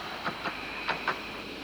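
A train rolls into a station over a steady mechanical hiss, its wheels clacking over rail joints in two quick pairs, fairly quiet.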